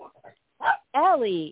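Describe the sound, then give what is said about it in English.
A dog barks: a few soft, short yips, then a sharp bark and a longer, drawn-out yowling bark that bends in pitch, loud and clear with no talking. “picking up on that Mars and Scorpio energy with the dogs.”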